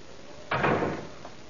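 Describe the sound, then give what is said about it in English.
A door at the bottom of a staircase shuts with a single broad thump, somewhat muffled, followed by a brief fading rattle; no one speaks. “Come upstairs now. And close the door at the bottom.”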